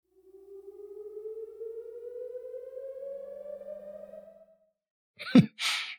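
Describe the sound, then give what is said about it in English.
A long, steadily rising synth tone at the beginning of a song glides upward like a siren for about four seconds, then cuts off, followed by a brief burst of sharp noisy hits. “And I thought the like synth at the beginning of this song was, it sounds very similar with where the siren is in relation to my house to how it sounds on Saturday at noon when they're testing them.”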